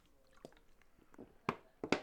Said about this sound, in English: That's me finishing my water.